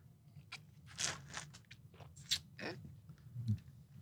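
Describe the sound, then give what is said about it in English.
Someone slurps a sip of bitter lemon vinegar away from the microphone, a string of short, wet, hissing sucks and mouth noises over a low background hum, with no talking. “Or, I'm going to slurp away from the microphone.”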